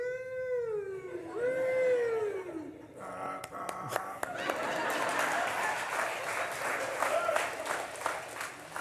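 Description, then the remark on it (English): A voice imitates a wailing siren, its pitch sweeping up and down for about three seconds, followed by a burst of clapping and crowd noise. “So how does a siren go?”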